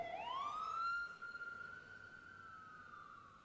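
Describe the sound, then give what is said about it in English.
A passing fire engine's siren wails upward and then holds a long, steady high tone. It is loud, with a faint low rumble of traffic underneath and no voices. “When a fire engine passes and its siren makes a loud noise, that could be scary.”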